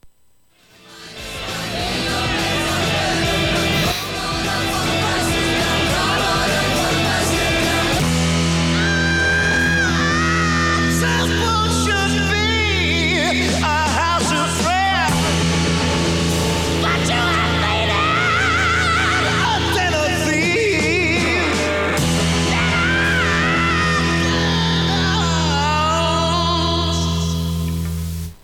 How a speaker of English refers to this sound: So again, he's singing words. He's actually singing words. And, this is just absolutely pissed off Jesus screaming in anger.